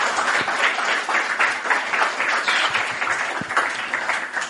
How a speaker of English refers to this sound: Well, thank you guys so much for coming out and congratulations on doing things that I could never even imagine doing in 48 hours. That's just incredible. Yep. Thank you. All right. Yep. A round of applause.